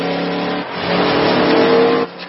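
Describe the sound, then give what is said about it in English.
A car engine hums steadily, then revs louder and rougher for a second or so before cutting down abruptly, like a vehicle accelerating away. No one speaks. “Crazy grandpa car.”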